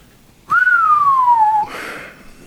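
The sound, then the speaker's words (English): A single sustained whistle by a person, starting on a high note and gliding slowly downward for about a second, followed by a brief breathy rush of noise before quiet. “What does that whistle mean?”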